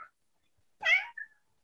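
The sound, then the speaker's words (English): A female cat gives one clear meow with a brief trailing chirp right after it, standing alone in an otherwise quiet moment with no talking. “You see, your cat knows all about it.”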